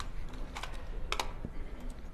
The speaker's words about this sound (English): Then while you do that, let me start typing.